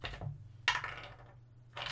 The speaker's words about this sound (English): Dice.